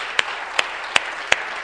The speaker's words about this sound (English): Let's just give a big round of applause. Thank you so much.